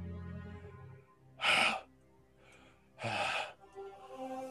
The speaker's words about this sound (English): gasps for breath, laying on the ground.